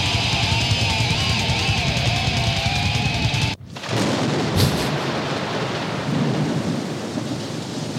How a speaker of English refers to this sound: That song is a blessing. Just the way it builds to that crescendo and then thunder.